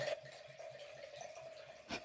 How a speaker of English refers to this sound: Should I keep talking over the wine pouring? I think it's fine. I think that people like to know how much wine I drink. That sounded like a lot of wine, but it's really only a glass. It's really not. It's not even a glass. It's only half a glass.